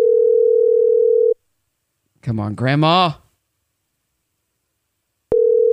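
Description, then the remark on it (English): A telephone ringback tone of an outgoing call to a grandmother's cell phone purrs steadily, falls silent for several seconds, then starts again. During the pause a person speaks briefly. The tone is clear and loud. “Let's give her a call right now. Come on, Grandma. Answer the phone.”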